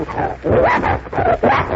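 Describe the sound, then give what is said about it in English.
A bloodhound named Vince barks loudly, several deep, drawn-out bays following one another in a quick, almost continuous run, with no one speaking. “That's a nice name, and you're a bloodhound, are you? Smart little doggy.”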